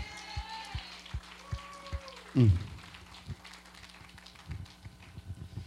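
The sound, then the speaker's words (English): An audience at a ministry service applauds, a steady patter of many hands clapping at moderate volume, with one heavier thud partway through and faint tones and voices early on. “Give Brother Gary and Miss Linda a hand for all they do. Give Roger a hand.”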